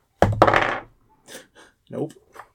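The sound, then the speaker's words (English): Dice tumble onto a hard surface: two sharp clacks and a short rattling clatter that fades within half a second, followed by a few brief murmured voice sounds. “Let's see if there's luck in this dice.”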